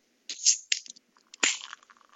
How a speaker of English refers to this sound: from TF Brewing, that's Templin Family Brewing in Salt Lake City, we have Albion, their Belgian-style triple. Woo! Ooh, 10.2% alcohol by volume. Oh, yeah. That's strong, baby. Allow me one moment while I pop my top. Oh, his top. Nice. And the pour.